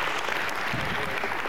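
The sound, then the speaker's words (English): Steady audience applause at a forum welcoming speaker Dr. Wilbur Williams, a dense wash of many hands clapping at an even, fairly loud level throughout the short stretch, with no voices rising above it. “I haven't said anything and I get applause.”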